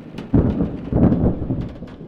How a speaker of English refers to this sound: Well, it kept me from thinking about the thunderstorm. Now, a big boy like you isn't afraid of thunder. Oh! That was close.